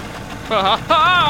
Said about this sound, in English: Now sit down so you don't fall out when I start the motor.